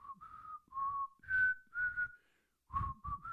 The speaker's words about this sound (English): Shall I go on Britain's Got Talent with you whistling? you never know.